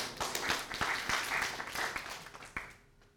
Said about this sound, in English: You can give him a hand of applause.